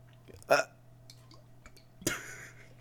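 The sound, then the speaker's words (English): Gulping sounds from someone drinking an entire bottle of eggnog in one go after a countdown: two loud, wet bursts about a second and a half apart, the second breathier and longer, with a low steady hum between them. “Are you just making sound effects into your mic, or are you actually drinking? Ah, man, I drank.”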